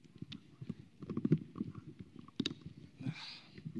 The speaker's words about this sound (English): Sorry, I need to open my water.